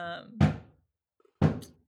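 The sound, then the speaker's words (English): Two heavy, dull thumps of a head against a door, about a second apart, fairly loud, each with a short resonant decay. A brief voiced sound trails off just before the first. “I think he's coming in now. He's just at the door with his head.”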